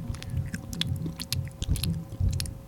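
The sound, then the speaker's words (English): A person imitates wet, smacking chewing noises with their mouth, a rapid series of sloppy clicks and squelches over a low murmuring hum. “They make weird mouth noise. It really grosses me out, actually, when they, like, they chew and they're like”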